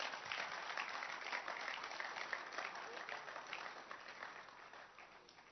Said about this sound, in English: Clap your hands for short prayers.